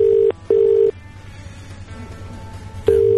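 A phone line ringing out as a live radio show calls a woman: two short steady tone bursts in quick succession, a pause of about two seconds, then the next ring starting. Clear and fairly loud over a low hum, with no voices.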